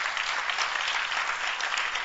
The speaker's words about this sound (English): Is it okay to clap for Jesus?